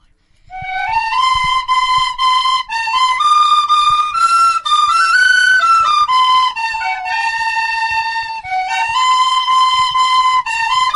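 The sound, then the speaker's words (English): Children play tin whistles in a bright, steady melody in unison in Piltown, the shrill notes sustained and stepping up and down with brief gaps between phrases, fairly loud with no talking. “So I let the kids do it for me and they're going to play us out with some till whistle.”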